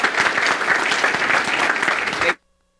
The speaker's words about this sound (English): So please give me a round, give a round of applause and help me welcome Ashley Thomas to the stage.